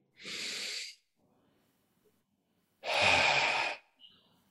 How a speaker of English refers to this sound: It's four simple breaths that we say aloud one at a time, taking a deep breath in and a deep breath out, just setting an intention and an attitude for connection.